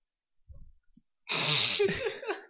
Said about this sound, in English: Do you plan to yawn every time I do this? I don't do that every time. No, this segment is just that boring.